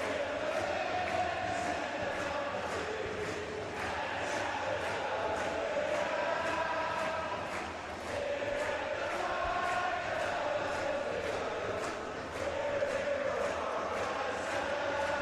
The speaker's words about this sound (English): The crowd singing the Believe anthem, getting pumped up. Ready to see RSL on the Timbers.